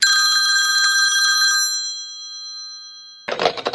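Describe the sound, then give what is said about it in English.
A telephone bell rings once in a loud, rattling burst, then its metallic tone rings on and fades away before a short clatter, like a receiver being picked up. “I sat behind my desk to focus my noodle, but before I could do much thinking, the phone rang.”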